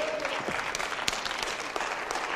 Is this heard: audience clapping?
yes